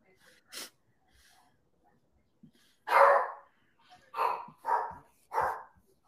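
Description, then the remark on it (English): A dog barks several times, one short bark first, then after a pause four louder barks in an uneven run, clear against an otherwise quiet background. “Your dog trying to tell you something?”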